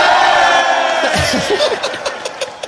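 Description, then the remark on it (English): A large crowd roars and cheers loudly in response to a speech vowing to beat Everton and win the Champions League. It is a dense sustained wash of voices with individual shouts rising out of it, then sharp bursts of cheering near the end. “Gets the cheer.”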